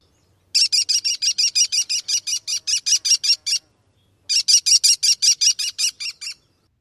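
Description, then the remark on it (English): An American kestrel gives two rapid series of sharp, high-pitched "klee-klee-klee" calls, about a dozen notes each, loud, separated by a short pause, with no other sounds. “An American kestrel.”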